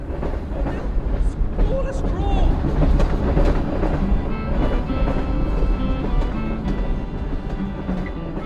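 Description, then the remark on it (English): A loud, noisy train rumbles past over a greyish-green bridge, its wheels clattering rhythmically over the tracks in a dense, continuous roar, with faint murmuring voices buried underneath. “But I was drowned out by a rather noisy train that was passing over the greyish-green bridge.”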